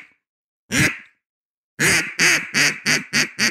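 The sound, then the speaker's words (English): An imitated gadwall duck quack: one loud, nasal quack, a brief pause, then a quick run of six raspy quacks in steady rhythm, clear with no talking. “Can you do a duck? Can you do a gadwall?”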